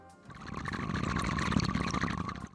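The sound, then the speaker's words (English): Bong water bubbling in a steady, gurgling rush for a couple of seconds, with a dense burbling texture that swells and then cuts off. No one speaks. “Cue the bong sound.”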